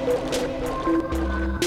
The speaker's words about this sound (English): Splashing noises.